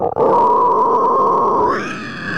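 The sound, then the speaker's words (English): A single sustained death metal fry growl made into a microphone, loud and raspy, holding a gritty buzzing tone for about two seconds before shifting slightly higher and thinner at the end. No other sounds accompany it. “Yeah, but what did you just do into the microphone? Oh, it's called a fry growl.”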